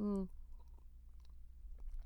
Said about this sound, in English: Excuse me. I'm going to have a sip of coffee because I feel like it. Stand by.